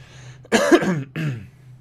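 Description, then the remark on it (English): Two harsh coughs in quick succession, the first longer and louder, the second shorter, over a low steady hum. “I'm sorry for all the coughing.”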